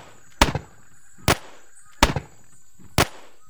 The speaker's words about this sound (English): And it was then I heard the first cannon shot. The cannon was long followed by another cannon shot, and after a considerable interval, by a volley of musket fire.